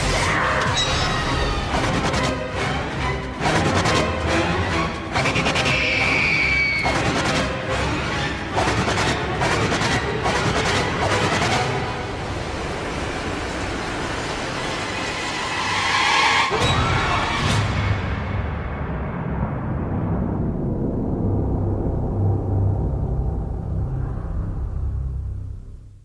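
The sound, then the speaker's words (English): A long, drawn-out scream rises out of a dense, roaring din of rumbling and crashing. The shrill wail surfaces more than once before the loud chaos tapers off at the end. “No, I think it was a scream.”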